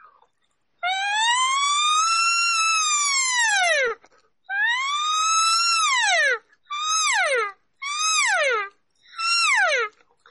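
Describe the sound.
A human voice mimics a siren, sweeping up and down in two long wails, then three shorter, quicker rising-and-falling calls, loud with brief pauses between.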